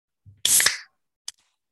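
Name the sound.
beer can being opened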